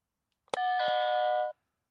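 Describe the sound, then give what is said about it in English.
A quiz buzzer, used for a Game of Thrones trivia question, sounds a bright two-note electronic ding-dong, sharp at the start and holding steady for about a second before cutting off, with no voices over it. “you got your buzzer ready?”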